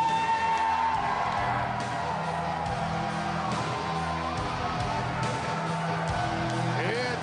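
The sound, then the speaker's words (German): A wrestling crowd cheers the return of Vampiro in a loud, dense, continuous roar, with scattered shouts and whoops rising out of the mass of voices, holding steady for about seven seconds. “Diesen Jubel an.”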